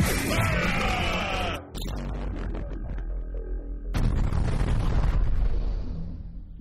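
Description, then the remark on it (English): A food cannon loaded with snacks fires with loud booms: a roaring blast up front mixed with yelling, then a second heavy boom a few seconds later that rumbles away. “load the snacks into the food cannon.”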